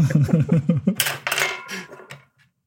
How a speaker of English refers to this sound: I mean, who's got the D100? I've got the table right here. Pulling some dice out. Hold on. All right. I've only got D6s in this room.